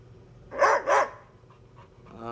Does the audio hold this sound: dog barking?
yes